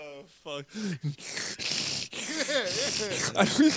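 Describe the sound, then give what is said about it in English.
A man breathes heavily and laboriously through an injured, swollen nose he cannot breathe out of, loud: rasping inhales and exhales broken up by strained, groaning vocal noises and snorting bursts, with no clear words. “Breathing like a fucking slee stack.”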